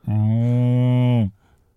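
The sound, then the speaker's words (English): A person imitates a cow with one long, steady, low moo, held for just over a second and then cut off. It's loud, with no other talk. “What I was going to say was, what is the easiest animal to impersonate? It's got to be a cow, isn't it?”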